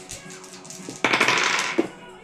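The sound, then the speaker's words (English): Two eight-sided dice are rolled for a damage roll in a tabletop role-playing game, clattering across a hard tabletop in a quick burst of rattling clicks and ending with a final sharp tap as they settle, after a moment of quieter shuffling. “Come on, fucking dice.”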